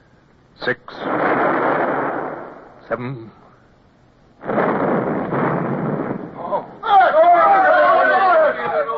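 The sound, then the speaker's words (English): Two heavy blasts from a ship's cannon firing on Spanish vessels, each a sharp crack swelling into a roaring, rumbling burst of about two seconds, separated by a short lull, followed by a man's voice calling out. The powder blast unseated the plug in the gun's touch hole. “The plug ran the touch hole. The powder blast unseated it.”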